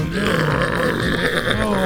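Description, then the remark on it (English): A low, buzzy, flatulent-sounding tone rumbles steadily through a music beat, loud and continuous for about two seconds, like a raspy bass blurt. “Why is the beat farting?”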